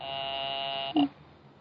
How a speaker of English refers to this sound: I will ring the service department. I am ringing.